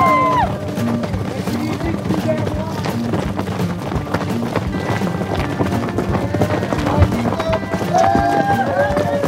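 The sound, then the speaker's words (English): About a dozen horses gallop past at the start of a race with runners in a barren desert, a rapid, continuous drumming of hooves, mixed with gusty wind buffeting the microphone and some indistinct voices in the background. “So all the runners get down into this wash first, come up into this barren desert, and pretty quick, on your right, come the horses.”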